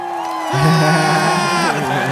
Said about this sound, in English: Yeah. Cue that motherfucking applause for the gods.